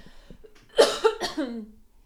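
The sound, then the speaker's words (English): Someone clears their throat in a few rough, harsh bursts, ending with a low gravelly rasp that trails off. No one speaks. “I need to clear my throat here, I guess.”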